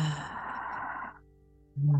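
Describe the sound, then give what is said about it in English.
A slow, deep, breathy breath out during a breathing exercise of breathing in and out for four counts, lasting about a second before fading, followed after a brief pause by the start of a voice. “Maybe breathe in for four counts and out for four. I'm going to do that right now.”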